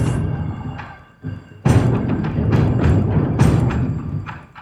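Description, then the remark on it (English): Deep, booming Japanese-style drum hits from drums in a video game, played by the player's clicking, strike in an irregular rhythm, with a low resonant thud under each beat and a brief lull before a louder, denser run of strikes. “These are the drums you just got? Yes. That's quite cool, actually. They sound like those Japanese Kobe drums.”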